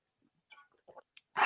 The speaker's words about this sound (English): Before I do, I'm going to take a quick sip of water here, folks. Pardon me.